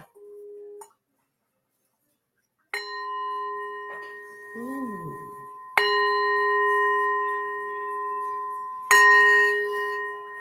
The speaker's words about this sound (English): I also have bells. I do the bells.